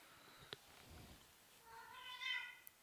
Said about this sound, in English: I've never heard a cat that loud.